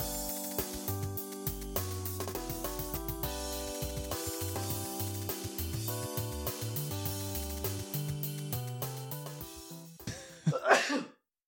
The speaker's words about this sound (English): I don't know if you sneezed over me or I'm not sure.